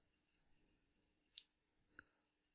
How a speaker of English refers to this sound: Do you still hear background noise? Yeah, I hear that clicking. Do you want to move the clock?